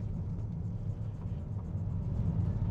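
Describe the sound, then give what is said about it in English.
A steady, low engine rumble fills the inside of a moving car driving to work, a constant droning hum with faint road noise and no voices, holding an even level throughout. “So I am chatting to you today from the car on my way to work.”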